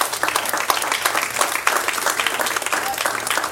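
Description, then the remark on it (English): An audience in a church bursts into steady applause, dense overlapping claps forming a continuous, fairly loud wash that holds level for several seconds without pause. “Y'all don't want to clap about this.”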